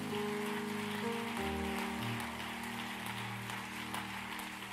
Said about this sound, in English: Can we clap our hands to the Lord one more time?